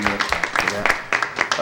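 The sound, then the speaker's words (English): Rapid, uneven hand claps ring out for under two seconds, sharp bursts coming several per second at a fairly steady loudness, with a faint voice murmuring underneath at the start. “That's my clap, sir.”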